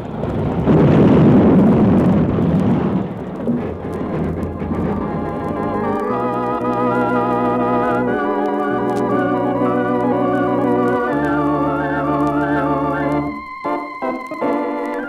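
A locomotive plows into the back end of a work train surrounded by workmen, scattering the men, with a loud, rumbling crash that roars for several seconds, then fades as dramatic music swells and carries on alone.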